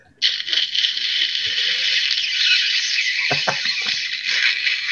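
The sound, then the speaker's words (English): A steady, bright sizzle like food frying in hot oil starts abruptly and holds for nearly five seconds, a dense hiss flecked with small crackles and pops, with no voices. “It's just brain cells are frying away, man.”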